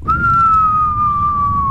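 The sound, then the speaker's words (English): A person whistles a single long, steady note that glides slowly downward in pitch, imitating a falling bomb, over a low rumbling background, lasting just under two seconds. “What you call it on Call of Duty? The bombs that drop the nukes.”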